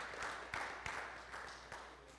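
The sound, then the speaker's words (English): An audience claps, a faint, steady wash of applause with a few sharper individual claps standing out now and then, and no voices over it. “Wow, you guys are like clapping.”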